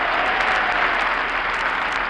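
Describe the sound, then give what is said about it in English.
Steady, dense applause from a crowd of many hands, a continuous crackling wash that stays at an even loudness for the whole couple of seconds with no voices over it. “What is that applause?”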